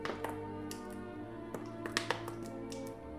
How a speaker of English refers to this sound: What is that? Oh, I'm drinking water. Why does it sound like you're beating that water bottle to a pulp? What are you doing? You're squishing it so much. I don't know. It's very, like, wilted.